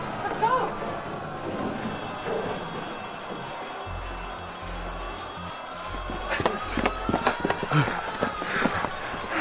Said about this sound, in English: Yeah. Run! Yeah, I'm running.